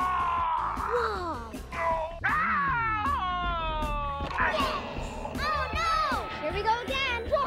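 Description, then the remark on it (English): Electronic Stretch Screamers toys screaming as they are stretched: a loud, continuous stream of overlapping wails that swoop up and down in pitch, strained and almost cat-like, over a low rumbling background. “Electronic stretch screamers. They scream when you stretch them and come back for more.”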